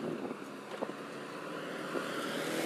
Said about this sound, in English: A lot of traffic coming.